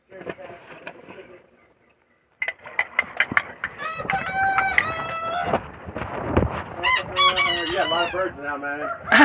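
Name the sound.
hens clucking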